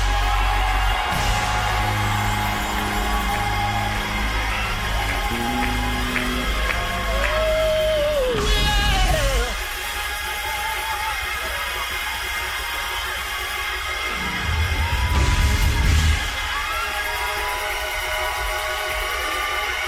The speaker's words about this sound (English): Somebody scream.